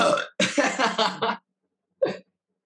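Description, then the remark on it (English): A long, loud, rumbling belch with a pulsing, stuttering rhythm, followed after a short pause by a second, much briefer burp. Clear, with no talking over it. “At least I didn't fart this episode. Senor Gassy over here.”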